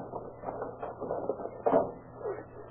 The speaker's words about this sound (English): Come on, here's a door we can pry open.